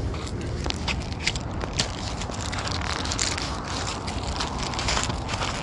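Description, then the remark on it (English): A crumpled Newport cigarette pack being handled, giving a steady stream of dry crinkling and crackling with sharper snaps scattered throughout, fairly loud and with no voices. “This guy had crumpled this shit up. And through Newports out here.”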